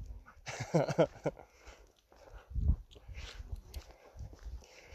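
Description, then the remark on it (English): A small dog following a walker gives a quick burst of excited whimpering yelps, then patters and shuffles along amid outdoor footsteps and a soft thump. “It's oh, dog's following me.”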